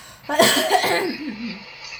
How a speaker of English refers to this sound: Someone else has a little bit of a cough. She still has a cough. Sounds like she's trying to start a car.